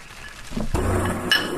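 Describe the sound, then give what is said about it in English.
Glasses of bourbon and apple cider clink together in a toast, a short bright ring that briefly hangs in the air, preceded by a duller knock. No one speaks. “To begin, I would just like to go ahead and raise a toast to the beginning of the second season.”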